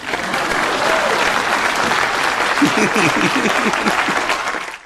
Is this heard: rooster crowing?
no